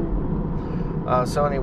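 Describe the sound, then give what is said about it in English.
A fairly loud car rumbles past, a steady low roar filling the whole moment, with a person starting to talk over it near the end. “Other than that, looking at doing, sorry, getting passed by a fairly loud car.”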